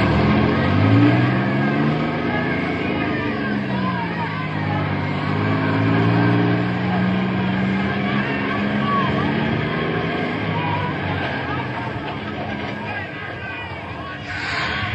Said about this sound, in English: Hold it, fellas. This bus is filled. Stand here now until it pulls away and the other one pulls up the load.